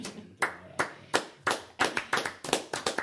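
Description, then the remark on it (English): A few people clap in short, uneven bursts that pick up pace toward the end, each sharp hand clap clear and distinct rather than a dense wash of applause. “We applaud boners.”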